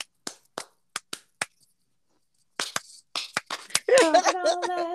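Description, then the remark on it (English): Sharp handclaps in a rhythmic pattern, some landing in quick pairs, about six in all, followed after a pause by people talking and a voice rising into song. “Listen, get a double clap.”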